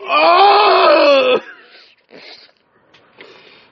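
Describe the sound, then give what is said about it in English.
A voice imitates a whale breathing: one loud, drawn-out groaning exhale lasting over a second, then a few quieter, breathy puffs. “You want to experience what a whale breathes?”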